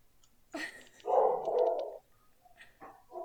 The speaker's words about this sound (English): Does a big boy bark? Well, there's an intruder.